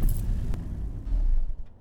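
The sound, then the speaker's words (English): A car's low engine rumble rolls along, with a brief sharp click partway through, then the road noise thins and settles as the vehicle slows and comes to a stop. “Stop the car for a sec.”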